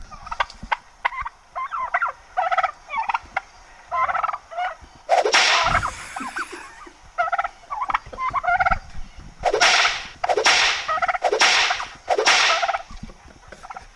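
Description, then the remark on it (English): Sharp, loud bullwhip cracks ring out about five times in uneven bursts, following a stretch of turkey gobbling and clucking; no one speaks. “Oh, get that bull whip. Oh, bull whip's cracking good today.”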